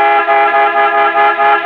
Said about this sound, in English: I looked out and he was leaning on the horn and beckoning to me at the same time.